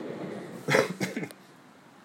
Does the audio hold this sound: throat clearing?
yes